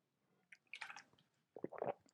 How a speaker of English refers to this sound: Excuse me, let me drink a little bit of water here.